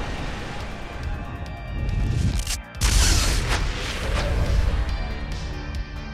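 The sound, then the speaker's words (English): A loud explosive blast with a deep, sustained rumble, punctuated by a sharp crashing burst partway through as debris and glass seem to shatter, then a lingering roaring wash of noise. “This blast echoes out and shatters the windows as it gets sucked into this pizza.”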